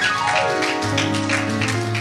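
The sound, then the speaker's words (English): A church audience claps in a steady rhythm, giving God a hand clap of praise for those who gave their life to Christ that morning, over sustained, swelling organ or keyboard chords; the music dominates and the claps come through as repeated crisp bursts. “Let's give God a hand clap of praise for whoever gave their life to Christ this morning.”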